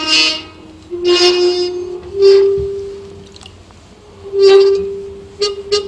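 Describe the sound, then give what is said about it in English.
Fingers wet with ordinary tap water rub along glass rods, drawing out a steady, low-pitched musical hum broken by several loud, harsh squeaking bursts at an uneven rhythm, with no talking. “which is if you take a glass and you wet it, you can rub your fingers on a glass and it will make a musical note.”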